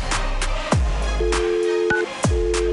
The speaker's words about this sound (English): There's the dial tone at least, so